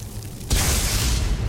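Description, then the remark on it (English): A low hum gives way to a sudden crackling burst as a Chain Lightning spell is cast from the right hand in a video game, followed by a steady, loud electric roar and sizzle that carries on with no voices. “I want to give Chain Lightning a try. I'm going to favorite that and put it in my right hand.”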